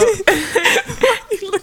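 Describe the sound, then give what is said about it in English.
Someone clears their throat in a series of short, rough, voiced bursts, several quick rasping pushes in a row, fairly loud, with no words spoken. “I can't clear my throat. Let me clear my throat.”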